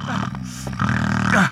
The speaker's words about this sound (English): Damn that infernal snoring! How can you sleep through this?